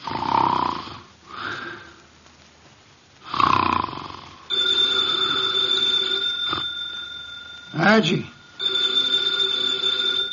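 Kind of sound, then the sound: household object, telephone bell ringing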